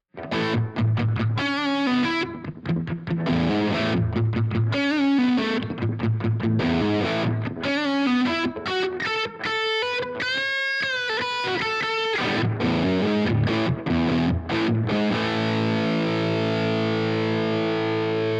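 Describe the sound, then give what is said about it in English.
A distorted electric guitar, a Gibson Les Paul Standard through a Maxon SD9 Sonic Distortion and a Strymon Iridium on its Marshall setting with a compression pedal kicked in, plays loud, steady riffs and bent lead notes with vibrato in a compressed, even tone, finishing on a long ringing chord; there is no talking. “I'm gonna kick in a compression pedal now.”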